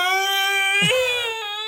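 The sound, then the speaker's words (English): A voice imitates the scream of the villain Voldemort: one sustained, high, piercing shriek with a strained, wavering pitch that cracks briefly in the middle, then carries on before fading slightly at the end. “That was my Voldemort scream.”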